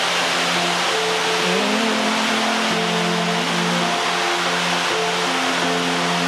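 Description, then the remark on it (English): Very heavy rain pours down in a dense, steady roar that fills the whole scene, with a low, wavering engine-like hum running underneath and no one talking. “It's raining very heavily.”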